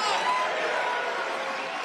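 A crowd of Trump supporters cheers Donald Trump in a steady, dense roar that holds at an even loudness throughout, with indistinct voices blending together and no single speaker standing out.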